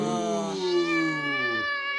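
A single long, drawn-out meow from an angry black cat, harsh and whining, that holds steady and then slides downward in pitch over about two seconds, loud with nothing else around it.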